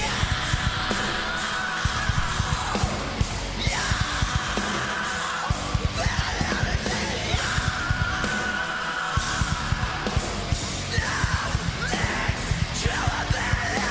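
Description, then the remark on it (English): Harsh screamed vocals and a death growl tear over loud, dense heavy metal instrumentation with pounding drums in a live pop and metal collaboration performance, the shouts coming in repeated bursts throughout. “Was that all the screaming?”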